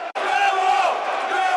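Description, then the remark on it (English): A dense, sustained roar of a football stadium crowd cheering at a Millwall match around the 52nd minute, loud and steady throughout, with a brief cut near the start before the swell of voices resumes. “You hear the effect it has on the crowd.”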